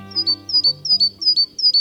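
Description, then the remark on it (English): A Great Tit chirps in a quick, steady series of about five bright, high, clear notes, with a faint low hum underneath and no talking. “Great Tits, a common songbird in the UK, learned how to peck through the foil to get at the cream.”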